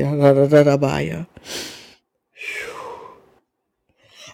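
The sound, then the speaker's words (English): A short voiced sound followed by two forceful, breathy exhalations through the nose, fairly loud, each lasting around half a second with a brief pause between them. “So, yeah, and I'm breathing into the nostrils of a thing.”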